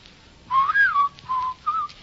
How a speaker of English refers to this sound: Shan't whistle. Go outdoors and whistle in the street.